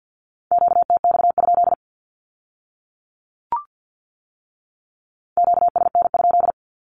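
Rapid Morse code at 50 words per minute in a steady mid-pitched tone sends a short Q-code group, pauses with a faint click, then repeats the same quick burst of dits and dahs. No voices.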